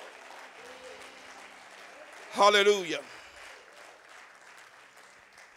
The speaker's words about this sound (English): Come on, let's give the Lord another hand clap of praise in here.